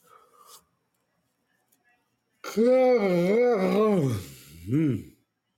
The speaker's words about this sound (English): That was me yawning, just in case anybody was wondering what that was. That was me yawning.